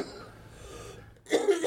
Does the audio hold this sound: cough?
yes